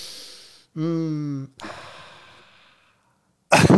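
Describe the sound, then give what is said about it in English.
A deep breathy inhale through the nose while smelling a flower, then a short hummed tone and a long, fading exhale like a satisfied sigh, with a voice starting right at the end. “I'm breathing in this delightful flower I have.”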